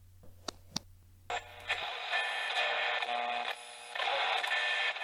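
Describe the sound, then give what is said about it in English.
A few sharp clicks over a low hum as a radio is switched on, then a burst of loud, hissing radio static that shifts in tone as the dial is turned to find a radio program, with faint whistling tones drifting through the noise. “I don't want to miss the start of my favorite radio program.”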